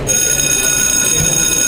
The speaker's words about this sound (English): Oh no, that's the bell. You better hurry up and not get to class then.